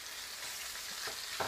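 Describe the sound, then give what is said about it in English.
Chicken pieces fry in a pan with a steady, bright crackling sizzle, a few louder pops rising near the end as another piece goes in. “And, yep, here goes another piece of chicken.”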